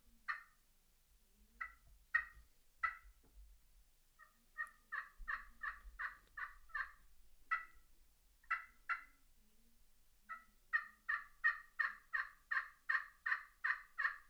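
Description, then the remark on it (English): Turkey yelps played on a pot-and-peg slate friction call: short, raspy, mid-pitched notes in uneven groups, building to a fast run of about a dozen evenly spaced yelps at the end, with no talking. “that slate has this sound that makes a tree yelp a little bit better than I would say an aluminum top, copper top, or a glass top.”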